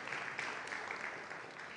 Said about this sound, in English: Is that absolutely amazing? You can clap. That's an amazing story.